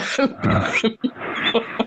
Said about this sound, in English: You okay? I'm coughing.